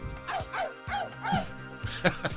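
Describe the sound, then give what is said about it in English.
Hillary Clinton imitates a dog, letting out a quick run of about six closely spaced, yappy barks in uneven rhythm, with the last couple sharper and louder. “The Hillary Clinton showing us how to emulate a true dog.”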